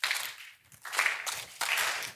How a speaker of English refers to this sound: I want to start a slow clap.